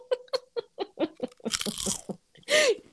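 A voice imitates crunching potato chips: a quick run of short, rhythmic mouth clicks and pops, then a harsh, noisy crackle, ending in one loud burst of breathy crunch.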